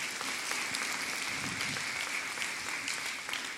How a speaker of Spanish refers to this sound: Entonces usted que dice, sí, dar un aplauso fuerte, Señor, dáselo fuerte.